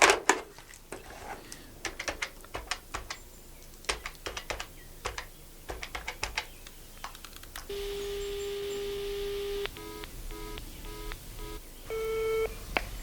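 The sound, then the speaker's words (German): A telephone being dialed over a speakerphone: a run of sharp button clicks, then a steady electronic tone followed by several short, evenly spaced ringing beeps, clear, with no talking. “Reich mir doch mal das Telefon, Liebling. Hier, Schatz. Danke. Schalte den Lautsprecher an, damit ich mithören kann.”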